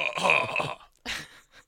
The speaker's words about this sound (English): cough real quick.